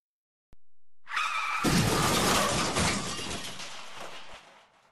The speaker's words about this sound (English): Virat reversed and rammed the guardhouse at maximum speed.